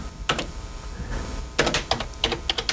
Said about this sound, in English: I'm typing with one hand, guys. Bear with me.